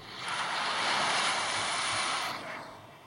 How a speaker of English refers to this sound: That ocean sound is part of the song. It does that a little bit. It goes around a little bit.